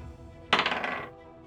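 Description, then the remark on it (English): Dice rolled onto a table for a fortitude save, landing on a 3: a sudden clattering burst of small hard objects tumbling across the hard surface, rattling for about half a second before settling, with no voices. “And that would be a 3 on the dice. The dice have spoken again.”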